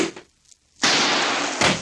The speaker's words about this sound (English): My knees bumped a chair.